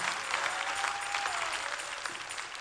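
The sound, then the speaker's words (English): A crowd of people clapping together to praise God during a sermon, in a steady, dense burst of applause that holds at an even level throughout, with a faint sustained tone sounding briefly in the background. “Clap your hands and praise God for still waters.”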